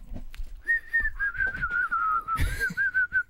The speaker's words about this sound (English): Do you suck in when you whistle or do you blow? Well, depends what night it is. Because I can only whistle sucking in.